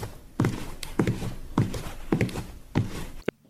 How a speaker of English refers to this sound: Footsteps are heard as Chief Shepherd walks into Tankard's. He steps up to the bar.